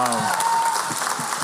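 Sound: audience applauding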